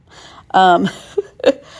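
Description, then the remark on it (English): A person yawns, a drawn-out voiced sound with a falling tone, followed by a shorter breathy vocal sigh a moment later. “you got two yawns today.”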